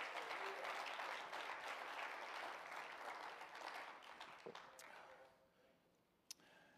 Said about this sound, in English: If you believe that, clap your hands tonight and praise Him.